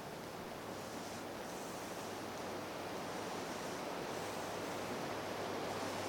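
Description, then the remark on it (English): Steady rain falling, a dense, unbroken hiss that holds at an even level for the whole stretch with no pauses or distinct drops standing out, and no one speaking. “You hear that rain?”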